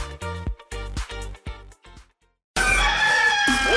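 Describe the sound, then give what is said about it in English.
A rooster crows in a string of loud, harmonic bursts that fade off, followed after a brief pause by a sudden dense blast of sound. No one speaks. “I overslept. Damn rooster didn't crow.”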